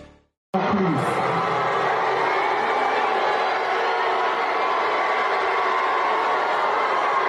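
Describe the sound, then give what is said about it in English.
After a brief silence, a large crowd at a Somali music festival in Minneapolis erupts into loud, sustained booing of Congresswoman Ilhan Omar, a dense unbroken roar of many voices that holds steady for several seconds without letting up. “That's Congresswoman Ilhan Omar being booed like crazy in her own district in Minneapolis.”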